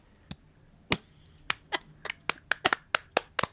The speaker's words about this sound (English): Sportsmanship, people. Yeah. We're clapping. Yeah.